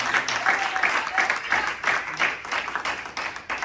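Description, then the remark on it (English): An audience claps their hands together for God in sustained, dense applause, many overlapping claps forming a steady roar that carries on throughout, fairly loud. “Let's give God a hand clap.”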